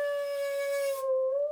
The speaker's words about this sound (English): A saw? Exactly right. This is the sound of a saw being bowed with, I think it's a cello bow.